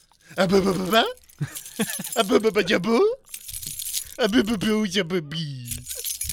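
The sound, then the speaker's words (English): Keys jangle and jingle in bright, metallic bursts, fairly loud, with voice-like vocal sounds running alongside through most of the few seconds. “Oh, look at the keys. Look at the keys.”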